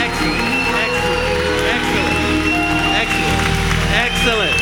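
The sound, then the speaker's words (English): An audience applauds the choir in a loud, steady wash of clapping, with cheering, whoops and shouting voices rising over it throughout. “Can we give our choir a big round of applause?”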